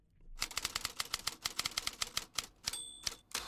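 Rapid mechanical typewriter keystrokes clatter in an uneven, steady rhythm, close and clear, with a short carriage-return ding near the end followed by a few more key strikes.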